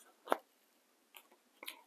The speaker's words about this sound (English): Sorry for all the shuffling of, I'm putting my stuff away.